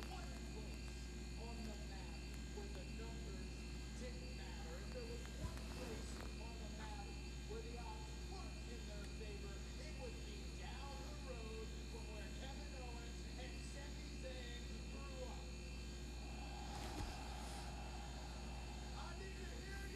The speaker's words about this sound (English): What is going on? I hear some weird buzzing.